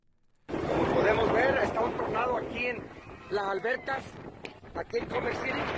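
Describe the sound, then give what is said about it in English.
Strong gusting wind from a windstorm on the first real day of winter roars and buffets the microphone outdoors at a park in Denver, a loud continuous rush that swells and dips, with people talking and calling out over it; parts of Denver had gusts up to 70 miles an hour. “the first real day of winter was the windstorm. So it's got to blow it all in.”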